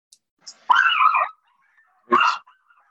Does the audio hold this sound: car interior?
no